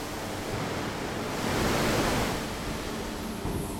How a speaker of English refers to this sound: The material must undergo a mill scale cleansing before rolling. In order to cleanse the surface, water is sprayed at high pressure, 160 bar.